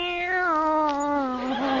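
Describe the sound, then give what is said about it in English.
A cat in a pet shop cage lets out one long, drawn-out, loud meow, its pitch sliding slowly downward with a slightly wavering, plaintive tone and no other voices around it. “Well, here they are. Meow. Meow.”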